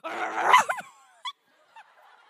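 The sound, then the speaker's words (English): A person imitates a scary dog bark, as if to convince someone outside that a real dog is in the house: one loud, rough, growling burst, then two short, quieter yips after brief pauses. “The baddest, nastiest, scariest bark you've got.”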